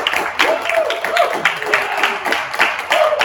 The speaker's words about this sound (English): I've got a few of the people from staff and a couple of our elders are here, so let's just hear a round of applause in the back.